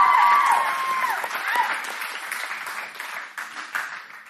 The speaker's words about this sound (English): You can clap. That's great.